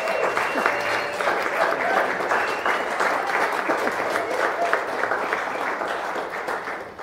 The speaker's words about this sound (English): You can clap.